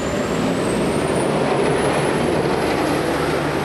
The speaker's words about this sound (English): When PM took to the water on a Sydney ferry, travellers were taking in the sights, smells and sounds of the city's waterways, including the roar of the diesel engines.